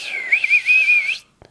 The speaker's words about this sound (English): And so she whistled really loud.